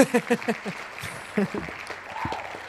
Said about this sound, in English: Applause, yay. It's Ooh. Almost like our live audience is still here.